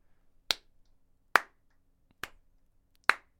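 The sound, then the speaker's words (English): Four sharp, evenly spaced hand claps at a slow, deliberate pace, a slow clap, each a crisp smack with a brief decay, separated by near silence. “I'm going to stop slow clapping because I just looked at the audio spiking.”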